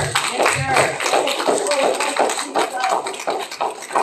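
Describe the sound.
A crowd gives the Lord a hand clap after a prayer in Jesus' name, a steady, dense burst of applause lasting several seconds, with voices calling out over the clapping.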